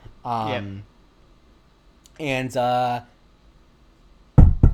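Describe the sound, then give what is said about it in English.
A voice imitates knocking with two drawn-out vocal bursts, retelling a scene from the TV show Monk of knocking on the door of room 202, followed by a short cluster of sharp knocks at the end. “Knocks on the door.”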